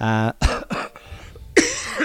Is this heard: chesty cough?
yes